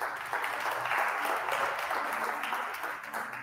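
A church audience claps together in a dense, sustained burst of applause for God during a service, many hands overlapping into a steady wash of sound that holds for several seconds before easing slightly.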